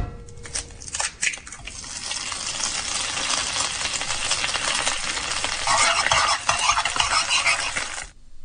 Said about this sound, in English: Egg in a frying pan, cooking.